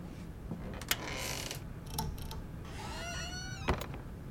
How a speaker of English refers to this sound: You closed the door all the way.